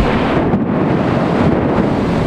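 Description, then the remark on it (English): Loud, continuous rumbling roar of a big thunderstorm, a dense, steady wash of noise that barely varies over two seconds, with no voices. “All of a sudden, then, the big thunderstorm of this past weekend came along.”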